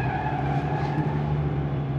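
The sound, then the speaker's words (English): A swerving car's tires skid and screech in a sustained, loud squeal over a steady engine roar, lasting about two seconds without a break, with no voices. “Am I angry because you would've run us off the road?”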